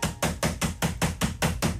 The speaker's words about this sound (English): no one really shares my work area here, and I don't often eat over top of my keyboard, but I want to see what's in it. Are you going to bang your keyboard today?